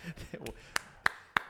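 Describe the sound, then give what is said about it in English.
A thin smattering of applause welcoming two guests, just three sharp, evenly spaced hand claps, fairly loud, following a moment of soft voices at the start. “Thank you for that smattering of applause.”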